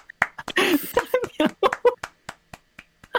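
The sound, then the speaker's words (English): A run of sharp, fairly loud hand claps, slowing into scattered single claps, with a burst of voice or laughter mixed in near the start. “If you're French charity, I clap you.”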